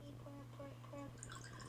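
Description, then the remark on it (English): Hennessy cognac drips slowly through a Brita water filter pitcher, soft repeated droplets falling at a steady pace over a low background hum, with a few brighter trickling sounds near the end. “It's still filtering.”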